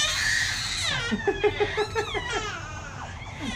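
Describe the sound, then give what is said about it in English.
A baby playing with toys in his bouncer lets out a string of excited, happy yells and squeals, several short bursts in quick succession, loud over a steady background hum. “Those are happy yells. He's playing with toys in his bouncer.”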